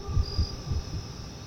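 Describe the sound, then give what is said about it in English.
A steady, high-pitched chorus of crickets chirping fills the short stretch, with soft low thumps pulsing underneath and no voices. “Yes, those are crickets you hear because there wasn't it much.”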